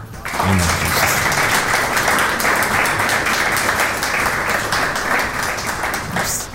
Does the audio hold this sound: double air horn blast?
no